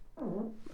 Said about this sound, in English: I have to fart again. Let it rip in the fucking mic. Come on. Pull it up.